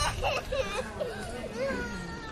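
A small child cries in drawn-out, wavering wails that rise and fall over a steady background of chatter from a crowd watching a street busker, the crying moderately loud throughout.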